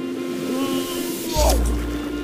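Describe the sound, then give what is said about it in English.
A flamingo's beak scoops up a mouthful of water, shrimp and algae with a single wet gulping splash midway through, over a steady low hum; nobody speaks. “I'm opening my mouth and taking a big bite of water, shrimp and algae.”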